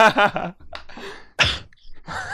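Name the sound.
loud cough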